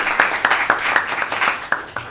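A crowd claps steadily, a dense patter of many hands with a few sharper, louder claps standing out near the front, sustained and moderately loud throughout.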